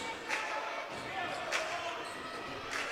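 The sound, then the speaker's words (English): A basketball bounces on a hardwood court three times in a slow, steady dribble as player Davison tries to run out the clock in the fourth quarter of a women's game, each thud sharp, over a constant hum of arena crowd noise. “Davison could dribble this out, probably.”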